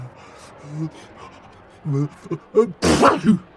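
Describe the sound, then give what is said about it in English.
A voice performs a big, exaggerated rhino sneeze: a few short, catching intakes of breath build up, then a loud, breathy burst explodes and trails off. “Then the rhino sneezes.”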